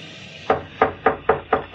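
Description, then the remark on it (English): After a brief quiet moment, a father carrying a tiny bundle cautiously raps six quick, evenly spaced knocks on the wooden door of a tiny cottage on the outskirts of the city on a dark, stormy March night, each a short hollow thud in a steady rhythm, moderately loud with no voices. “At the door of a tiny cottage on the outskirts of the city, a father, carrying a tiny bundle, raps cautiously on the door.”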